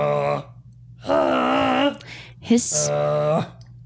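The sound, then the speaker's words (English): A voice imitates the loud snoring of a big dragon taking a nap: three drawn-out, rumbling groans, one short and two longer, with a breathy hiss between the last two, alone. “His snoring's kind of beautiful in its own way.”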